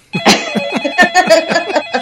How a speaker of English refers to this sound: That startled me, the phone ringing.